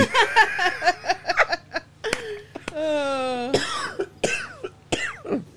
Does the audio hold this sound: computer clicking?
no